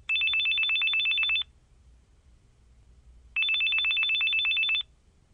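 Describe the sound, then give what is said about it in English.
A telephone rings in two bursts, each a rapid trilling bell of high, buzzing pulses lasting about a second and a half, with a pause of quiet low hum between them. No one speaks. “Why are you calling me?”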